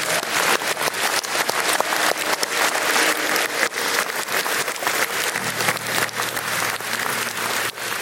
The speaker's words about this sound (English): Come on, let's clap it up for Jesus.